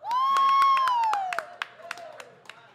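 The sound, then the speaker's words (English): A loud, high sustained whoop from the audience rings out over scattered sharp claps in applause for David McMahon, then fades while a few sparse, irregular claps carry on. “Round of applause for David McMahon, everybody.”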